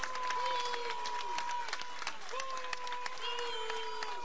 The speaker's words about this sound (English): At a prayer vigil, Governor Ron DeSantis vowing to provide more security to Florida HBCUs, but facing boos from the crowd.